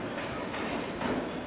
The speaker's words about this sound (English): All they need to do is play the subway again. Play the subway again.